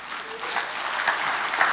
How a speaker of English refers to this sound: So, you know, we got like 50 of us that can clap on that.